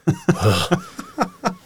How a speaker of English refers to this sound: It's that it's going to dampen your disgusting, disgusting hacking cough. Yeah. That you can't seem to cover with your elbow for the life of you.